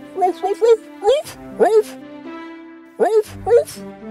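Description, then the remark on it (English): A voice imitates a dog named Max barking to greet an old couple returning home, giving quick bursts of yappy, rising barks in small clusters, with a short pause before a final pair. Fairly loud. “When the old couple returned home sadly, their dear dog Max barked to greet them.”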